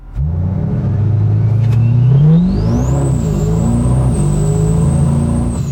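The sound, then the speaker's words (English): A loud heavy truck engine with 950 pound-feet of torque, built by CFT Performance in Collinsville, Illinois, revs up hard, heard from inside the cab, its deep throaty drone climbing then dipping as gears shift quickly, with a high whine rising above it. No one speaks. “That thing revs fast.”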